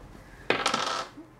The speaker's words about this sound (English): Physical dice? First time actually rolling dice here.